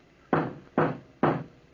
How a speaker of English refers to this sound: Wake up, old Peter, wake up! Hey, you old Peter, wake up before I pound the door down!